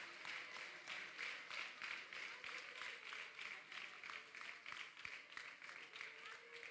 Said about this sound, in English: Let's give the Lord a hand clap of praise in the building.